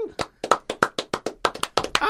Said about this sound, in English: I had to clap there